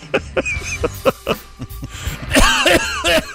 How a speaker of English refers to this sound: 6 minutes you had to cough. What a mess.